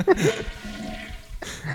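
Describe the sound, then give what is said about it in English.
A short rushing gush of a toilet flushing, loud, with the water noise surging at the start, dipping briefly, then swelling again near the end. “We had an entire soundbite of a toilet flushing for you.”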